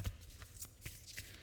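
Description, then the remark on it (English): Quiet riffling and soft papery flicks of a deck of cards being shuffled for a card reading, a few brief bursts of crisp rustling with light taps, no voices. “You can hear me shuffling.”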